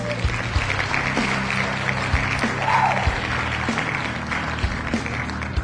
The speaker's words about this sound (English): So this applause is sarcastic.